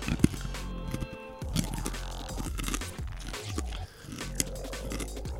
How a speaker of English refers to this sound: I'm going to eat another one now. If you can hear it crunch.